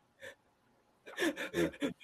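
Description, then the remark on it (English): A voice imitates panicked breathing: one short breath, a pause, then a rapid run of four heavy, ragged gasps, loud and strained. “I was almost in, I woke up in tears, breathing heavy like my house was on fire.”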